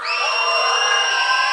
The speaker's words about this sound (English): Okay, I'm going to put my hands over their heads, and I want to hear you guys cheering for who your favorite singer is, okay?